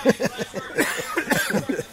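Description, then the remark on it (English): A rapid run of short, raspy coughs, fairly loud, sputtering in quick repeated bursts for about two seconds with no clear speech; a person coughing from hot pepper fumes in the air during a spicy food cook-off. “I introduced …, Carl's brother, as he's coughing because of the hot peppers in the air”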